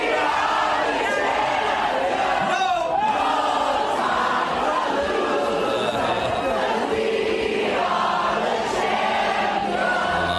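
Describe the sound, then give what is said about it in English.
A packed Las Vegas nightclub crowd cheers and shouts nonstop as Travis Kelce sprays the whole crowd with champagne, many voices overlapping into a loud, dense roar with occasional whoops rising above the din. “And he decided to spray down the whole crowd with champagne.”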